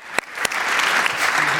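Audience applause fills the moment, a dense, steady wash of clapping with a couple of sharp louder claps standing out near the start, no voices on top.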